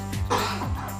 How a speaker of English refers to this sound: Cough. What? Coughing?